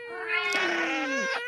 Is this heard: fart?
no